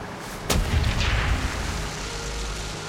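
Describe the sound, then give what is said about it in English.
A single heavy U-boat deck-gun shot, fired as a warning shot at the ship Farnborough, cracks out sharply, followed by a low, booming rumble that fades slowly into a steady background roar. No voices are heard. “The U-boat's deck gun fires warning shots at Farnborough.”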